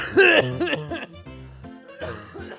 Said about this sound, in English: Really should have coughed before I started recording.